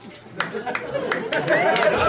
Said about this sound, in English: Shouldn't be clapping at that. That's disgusting.